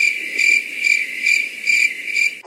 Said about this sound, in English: Cricket sounds.